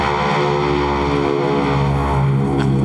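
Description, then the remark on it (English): An aircraft engine run-up done outside a shop: a loud, steady propeller-engine drone with a rich harmonic hum and gritty roar, holding constant throughout with no voices. “it's one of the guys doing an engine run outside the shop.”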